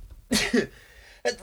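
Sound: sneeze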